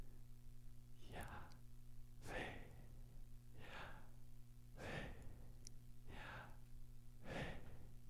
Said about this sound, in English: And that right there is breathing in and breathing out, pronouncing, quote unquote, or speaking the name of God.